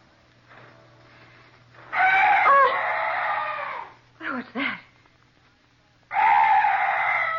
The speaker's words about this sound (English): Oh, some night bird. Yes, that's all. Such a weird sound. I've never heard anything like it before. Heaven, it's gone. That's strange. That bird was the only noise I've heard in this place.